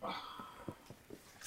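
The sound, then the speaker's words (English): A tired puppy snuffles and sniffs in short, soft bursts, starting with a faint thin whine, then a few quick nasal snorts spaced irregularly. No one speaks. “He's just being a baby. He's tired.”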